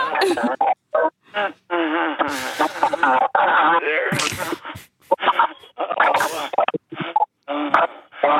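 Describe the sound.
A voice imitates a distorted, digital-sounding moaning noise: choppy, whiny vocal bursts with crackly static edges, fairly loud, broken by short silences.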